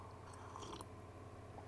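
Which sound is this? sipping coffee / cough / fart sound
sipping coffee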